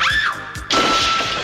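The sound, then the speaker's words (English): Glass smashes on someone with a loud, sudden crash partway through, followed by a bright, lingering rush of breaking shards. It follows a brief whooshing sound, and no one speaks. “Eat glass, creep!”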